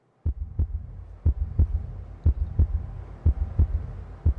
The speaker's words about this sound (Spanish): El minuto siguiente fue de un silencio tan intenso que podíamos oír nuestros corazones que golpeaban en el cuarto de vidrio y el lento y lubricado girar de la luz.